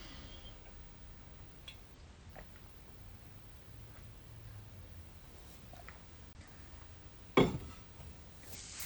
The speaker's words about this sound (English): I'm going to take a drink of water because I want to get this right. Take a pause.